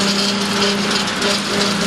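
A mower engine runs steadily and loudly while mowing lanes between pine trees, a constant droning hum with a buzzy, high-pitched whine and no pauses, heard on its own without any voices.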